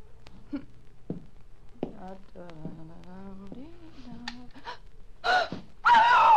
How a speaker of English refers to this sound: Why did you scream? Help! Well, who wouldn't?